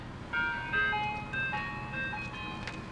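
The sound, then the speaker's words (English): An ice cream truck rolls by at sunset, its tinkling, music-box jingle playing a bright repeating melody over a low engine rumble, steady, with no voices. “There's a sunset, they're driving off, and an ice cream truck rolls by.”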